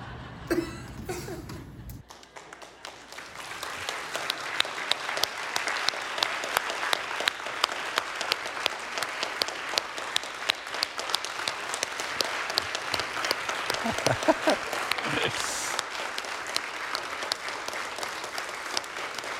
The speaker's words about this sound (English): This is early for a standing ovation.